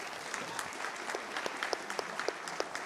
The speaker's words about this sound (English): Thanks to the ladies back there who do the coffee room every week. The ladies and guys, can we give them a round of applause?